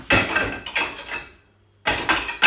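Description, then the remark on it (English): Plates clatter and clink as they are loaded into a dishwasher, in several bright, rattling bursts with a short quiet pause before a final round of ceramic knocks. “Anyway, I'm just putting some plates in the dishwasher, so hang on.”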